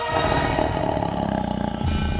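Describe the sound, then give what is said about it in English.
A tiger lets out a deep, rumbling roar, loud and sustained for a couple of seconds with a rough, growling texture and no voices alongside. “The tiger saw the life in the other animal's muscles, and for the first time considered how fragile they were, how succulent.”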